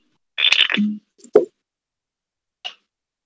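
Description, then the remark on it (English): A shot of liquor poured into a small glass, a brief gurgling plop that drops in pitch, followed by two light clicks of glass or bottle, with no one talking. “I'm just pouring myself one more shot.”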